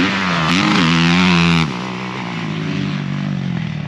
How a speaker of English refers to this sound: That's Tanner Ward heading by there. Oh, like I said, he's on the 450, just kind of, I guess he's got a race bike.